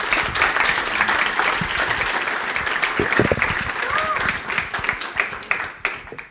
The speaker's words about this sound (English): Well, let's give these guys a round of applause. Thank you, guys.